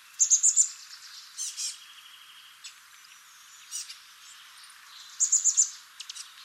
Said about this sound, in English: It's the chestnut-backed chickadee, Piscelea rufescens. Here are some chestnut-backed chickadees in California making a variety of squeaky calls.